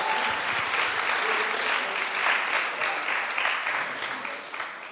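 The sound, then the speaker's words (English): An audience claps steadily in sustained applause as a guest speaker is invited up, a dense wash of many hands that holds throughout and begins to thin slightly near the end. “Why don't we give Dan a round of applause?”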